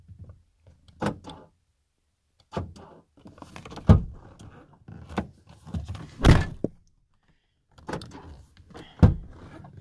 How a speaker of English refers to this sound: I don't know why my car door's not locking. I can still open it up. Maybe, are you able, or should you be able to open your car doors up from the inside even if they're locked?